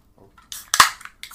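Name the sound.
beer can cracking open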